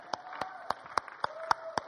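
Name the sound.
audience applause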